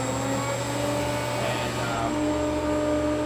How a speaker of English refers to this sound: This is called a screw pump from Atlas Copco.